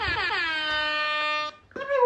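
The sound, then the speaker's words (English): A loud, sustained air horn blast from an air horn app, with rich buzzing harmonics, lasts about a second and a half, cuts off, then a second blast starts right after a brief pause. “Otherwise, all the free ones is just not the same air horn.”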